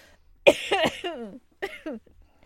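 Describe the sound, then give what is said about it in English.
A loud fit of coughing: a sharp hack followed by several rasping, wheezy coughs, a brief pause, then two more strained coughs. “Please stop coughing. We'll wait until you stop coughing.”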